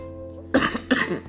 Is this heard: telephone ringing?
no